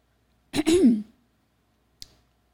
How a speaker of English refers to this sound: Okay. I mean, you clearing your throat.